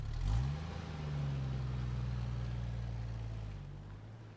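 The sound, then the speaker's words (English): A bus engine, the bus packed with people, idles with a low, steady rumble, rising briefly as it revs near the start, then settling into a constant droning hum. “Finally, we found the bus, packed to the brim with people.”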